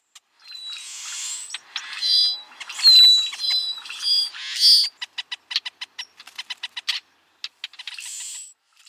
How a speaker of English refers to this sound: One more time, here are some Brewer's blackbird sounds.